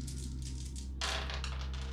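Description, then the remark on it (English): Two dice, rolled for an attack's damage, rattle and clatter across a hard surface in quick, uneven bursts, softer at first and then a louder tumble of clicks halfway through, over a steady low hum with no talking. “Grab my dice here.”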